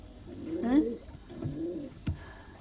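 A sparrow called Piafou calls in two soft, low warbling bursts, with a brief sharp click near the end and no talking.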